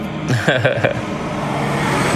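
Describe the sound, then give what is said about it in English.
A tow truck rumbles past, its steady engine and road roar filling the scene, with a brief burst of someone's voice near the start. “You know, here come a tow truck or whatever this thing is.”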